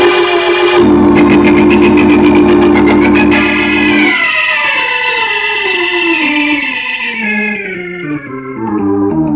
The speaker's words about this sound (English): Give the order, Salliver. Police boat, Sam!